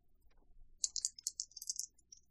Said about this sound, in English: Did you hear what I just did? You rolled actual dice. I rolled actual dice.